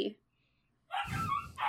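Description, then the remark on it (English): A puppy barks: a short yip at the start, a brief silence, then a louder, drawn-out burst of high-pitched yelping barks. “And again, I apologize for this noisy puppy.”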